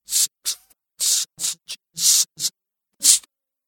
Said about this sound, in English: E-squared de-esser is different. It actually chops the input signal up into two separate paths and processes these paths completely independently. So if we listen to the first path, we'll hear just the sibilants.